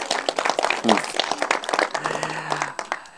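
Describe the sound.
An audience breaks into dense, steady applause, many hands clapping at once in a lively room, with a few voices calling out and cheering beneath the clapping.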